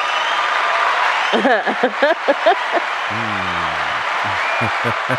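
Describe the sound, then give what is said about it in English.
Steady, dense hand clapping fills the background throughout, with voices and some low, drawn-out vocal sounds rising over it partway through. “Why you give me a clap?”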